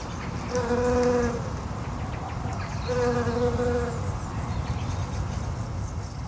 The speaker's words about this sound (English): we've been out looking for them in August, you could pick them out quite quickly that they were different and just by the higher pitch. Yes. And they're also quite fast bees again, so that this is where the sound was very useful for picking them up.